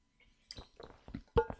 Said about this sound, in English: that I took a bottle of water in my hand and I'm going to drink it now.